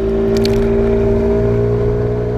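A boat engine runs steadily, a loud, constant low droning hum with a buzzing tonal edge, heard alone with no talking, plus a few faint brief clicks near the start.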